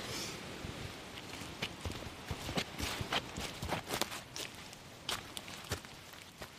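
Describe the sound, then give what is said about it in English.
Steady footsteps crunch along a trail on the way to a hut, a brisk irregular series of scuffing steps over a constant hiss of cold wind, with no one speaking. “Oh, well, we better keep walking.”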